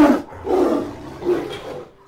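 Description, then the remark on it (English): A deep big-cat roar of a saber-toothed tiger rolls out in three growling surges, loud and rough, with no voices around it, like a prehistoric tiger sound effect. “If you think historically, way back in the caveman times, anxiety that was there to protect humans from predators. Like, for example, a saber-toothed tiger.”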